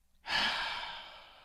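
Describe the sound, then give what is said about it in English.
A single long, deep breath drawn in through the nose during a breathing exercise, a steady airy hiss that swells quickly and then slowly tapers off, with no talking. “Is there a breathing exercise for this? All right, everybody. In through the nose.”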